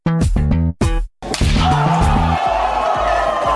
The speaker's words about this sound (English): So let's have some levity. Let me calm down while you summon the theme song